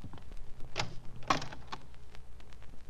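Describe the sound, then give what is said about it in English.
A closet door with a mirror on it is opened, with a few short clunks and a brief scrape spread over a couple of seconds against a quiet room hum. No one speaks. “There's a mirror on the door of that closet to your right. Open it and see how you've improved.”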